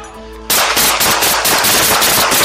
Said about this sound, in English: Shots fired! Shots fired! One down!